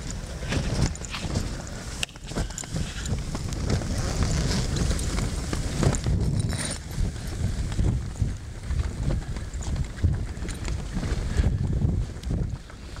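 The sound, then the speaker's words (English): Strong wind roars across the microphone outdoors, a steady loud rumble with gusty swells and buffeting, and faint crunching steps passing through underneath. No one speaks. “It's windy out there.”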